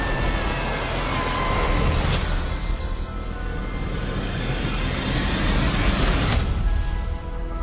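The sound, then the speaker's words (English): A Delta rocket's engine start and liftoff roar after a countdown: a loud, steady, deep rumbling blast that holds throughout, with a couple of brief crackling bursts cutting through the noise. “This is Delta Launch Control. Go for launch. Three, two, one. Engine start and liftoff.”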